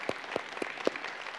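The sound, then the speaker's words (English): Quiet audience applause for the single parents in the room: a handful of crisp, evenly spaced claps stand out above a soft, scattered patter of clapping, with no one speaking. “And I got to tell you, if you're a single parent in this room, we want to applaud you today because you have a tough job, you have a hard job.”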